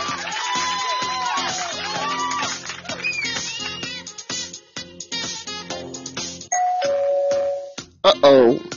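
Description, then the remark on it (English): A little alarm the host set up: an electronic alarm chime plays a busy run of bright, doorbell-like tones, then holds one steady beep for about a second before ending in a quick warbling flourish. “That's my little thing I had set up, my little alarm.”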